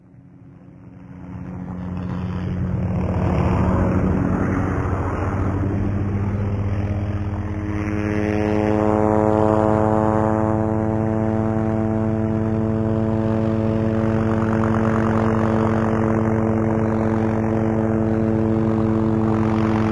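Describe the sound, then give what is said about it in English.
A helicopter flies with a loud, steady drone, its low throbbing rotor hum and engine whine holding constant throughout, with no voices. “There's the bunker. Now to get off this chopper.”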